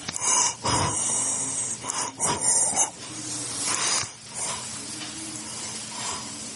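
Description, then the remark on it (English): Harsh, wheezing breaths of a dying 94-year-old man with end-stage congestive heart failure rasp in and out in an uneven rhythm, each one a noisy hiss with a rattling edge, fairly loud, recorded at his bedside in a nursing home in Cleveland, Ohio, just after midnight. “You can probably hear him breathing here in the background.”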